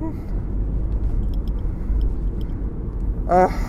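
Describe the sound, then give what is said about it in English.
Steady low engine rumble of cars in heavy traffic fills the scene continuously, with a brief harmonic whine, like a horn or brakes, rising near the end. “I'm gonna wrap this up because this is some of the worst traffic I've seen in, like, a minute down here.”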